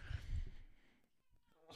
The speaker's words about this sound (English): It's the fucking cat.